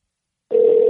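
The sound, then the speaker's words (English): A phone's outgoing ringing tone on a regular, non-FaceTime call to Sean Mooney begins abruptly after a brief silence, a steady mid-pitched electronic hum held at an even, fairly loud level until the end, with no voices. “You probably should call the other phone”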